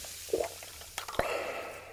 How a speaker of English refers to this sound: He has all the dipping sauces with the nuggets, and he's pouring a Sprite right now.